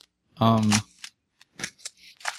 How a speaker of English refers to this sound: well, if I go, I hear rustling. Yeah, if you're not talking, if you could mute.